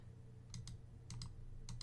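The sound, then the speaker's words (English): Computer keyboard typing as someone types a message in a chat: three pairs of quick key clicks spaced evenly apart, fairly quiet over a low steady hum, with no one speaking. “he's currently typing in the chat what his problems are.”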